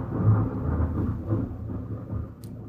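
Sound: thunder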